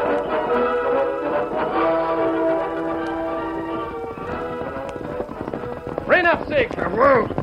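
Horses gallop with rapid, steady clip-clopping hooves, mixed with loud sustained music, and a horse whinnies near the end.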